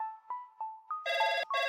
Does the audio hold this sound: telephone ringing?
yes